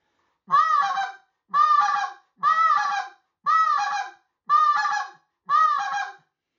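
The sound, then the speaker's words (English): A goose call blown in double clucks: six evenly spaced, loud honking clucks about a second apart, clear with no voices, each note a short, reedy burst. “That's kind of throwing a little double cluck, you know, the cluck with a double cluck behind it.”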